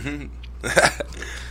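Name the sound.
loud fart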